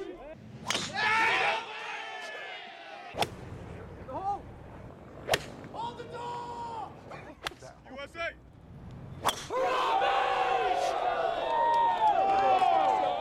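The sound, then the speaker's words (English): Sharp cracks of golf tee shots, each quickly followed by golf fans shouting and yelling things like "get in the hole", with bursts of crowd noise and a loud cheering swell near the end. “All right, look, there's nothing worse than rabid golf fans yelling stupid stuff like, get in the hole, when a bloke is hitting 300 metres from the green.”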